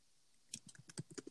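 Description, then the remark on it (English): Rapid, sharp keystrokes clatter on a computer keyboard, about ten loud clicks in quick succession after a brief quiet moment, crisp. “Oh, quit typing so goddamn loud.”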